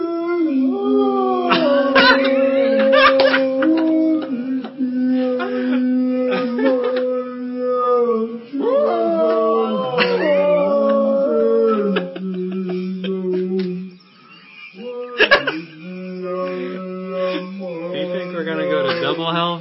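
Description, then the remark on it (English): Long, wavering dog howls, played back at half speed, stretch across the whole clip, rising and falling in pitch with a few brief breaks, sounding low and drawn out, with occasional yips mixed in. “too much howling.”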